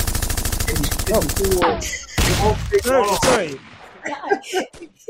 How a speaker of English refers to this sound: I didn't know there was that many gunshots. He just kept going. There were so many gunshots in there.